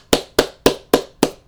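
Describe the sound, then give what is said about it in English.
Five sharp hand claps in a steady, even rhythm, each a crisp slap with a brief decay and nothing else sounding between them. Only a single clapper is heard, not a crowd. “Let's give my mom a round of applause.”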